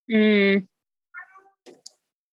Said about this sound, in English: cat is meowing along.